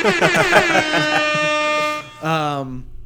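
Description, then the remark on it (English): An air horn alarm sound effect, used as a spoiler alert, blares in two loud, steady, buzzy blasts: a long first honk, a brief pause, then a shorter second blast. “Well, I need a spoiler alert thing. Yeah. Just an alarm.”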